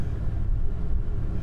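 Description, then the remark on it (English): A Vantage sports car accelerates hard off the line from a standstill, its engine a dense, loud low-pitched roar that holds steady throughout the short burst, with no one talking. “Watch the vantage off the line, see how its traction does.”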